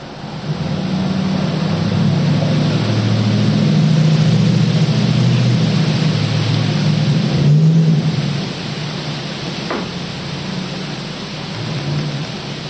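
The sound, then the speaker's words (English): A car rumbles past outside, a low, loud droning hum that swells over several seconds and then fades away, with steady background noise and no voices. “Yeah, dude, so, no, that sweet, was just a car.”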